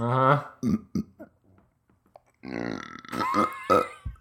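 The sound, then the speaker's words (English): A stifled, swallowed burp comes out as strained, croaky gulping bursts, a short pause, then a longer rough, choking belch sound with no talking. “I swallowed the burp. I can't breathe.”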